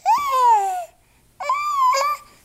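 A baby's voice, loud, gives two drawn-out, wavering wails separated by a short pause, somewhere between fussy babbling and crying, with no other voices.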